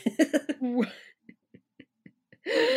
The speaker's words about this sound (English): Oh, sorry, just trying to stifle a cough.